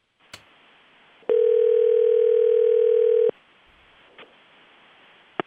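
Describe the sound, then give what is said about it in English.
A steady, loud telephone dial tone hums for about two seconds after a dropped call, framed by a few faint clicks and handset knocks before and after, with no one speaking. “Sam Hinkie vanished into space. I'm gonna hang up the phone in case he calls back.”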